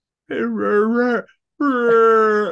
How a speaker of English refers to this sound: He's a little tired right now. I shook him out of his slumber. Does Tucker want to close out the show? Sure. get a big yawn out of him.